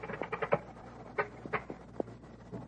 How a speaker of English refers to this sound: And you can hear the primer. Hear it squeaking?